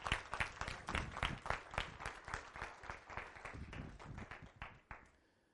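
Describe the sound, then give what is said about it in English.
A crowd applauds, giving God a hand clap, with dense, overlapping hand claps, loud at first and gradually thinning and fading out after about five seconds. No one speaks over it. “If you believe that, give God a hand clap.”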